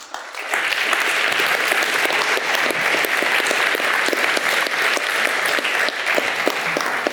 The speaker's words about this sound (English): You've heard four compelling cases. In fact, I'd like to ask for another round of applause for the collective effort. Thank you.